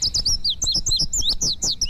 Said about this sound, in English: For a more accurate description of the male of the species of today's featured feathered friend, the indigo bunting.